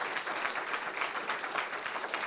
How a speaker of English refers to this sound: So I'd like to thank my fantastic panel. So if you give a round of applause